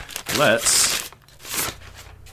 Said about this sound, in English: if you would like to release your beer from its captivity of paper bags and show the world what you got. All right, let's see.